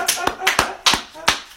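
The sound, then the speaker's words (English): A few scattered hand claps from an audience during a sermon, sharp and irregular, roughly seven or eight over a second and a half, moderately loud, with no clear talking. “Can somebody, can you clap for me?”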